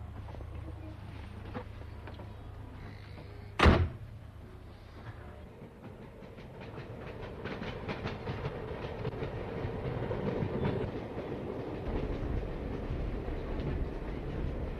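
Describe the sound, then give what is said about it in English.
Steady rumble of a moving train in Ireland, heard from inside a carriage as it travels east from Mullingar alongside a canal, with rhythmic clattering of wheels over rail joints and a sharp bang about a third of the way through. No talking. “So I'm going to have a look at the canal as we travel alongside it from the train window.”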